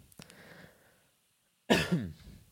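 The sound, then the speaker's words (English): After a near-silent pause, someone lets out a sudden, harsh cough caused by vape smoke, a loud burst that rasps into a second rougher push before trailing off. “Dude, I saw that vape. It made me cough.”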